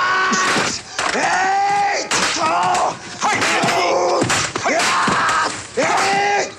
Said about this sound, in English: All right. Some good yelling from the ninja people.